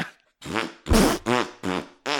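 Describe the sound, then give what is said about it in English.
Five loud, buzzy fart noises burst out one after another in quick succession, apparently a voice blowing raspberries to imitate farting. “Oh, no, I've shat myself.”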